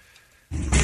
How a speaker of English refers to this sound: Whoa! That was fast! Guy just going a million miles an hour, and the bike's already crashing, and he is sliding good 200 feet.